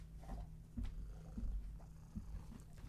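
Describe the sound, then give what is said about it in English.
A cat purrs steadily, wanting love and attention. It makes a low continuous rumble that swells in gentle rhythmic pulses with each breath, fairly soft, with no voices. “Everybody wants to make noise right now, huh? Air Force, the cat wants some love and attention, too.”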